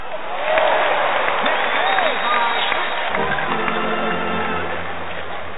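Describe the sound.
A sound effect of a restless crowd clapping steadily for several seconds, a dense, loud patter with scattered voices calling out in the mix and a low steady hum emerging toward the end.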